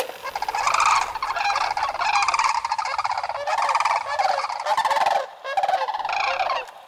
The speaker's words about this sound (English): Before I finish here, because we said it earlier, and I don't want to cut it out, I would like to briefly play the sound of a sandhill crane.